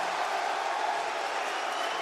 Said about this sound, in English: And Sting launching Scorpio Sky! And now the icon! Oh my God! And the crowd goes wild.